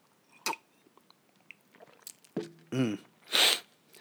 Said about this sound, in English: And on that note, I'm going to have a sip of this Makers.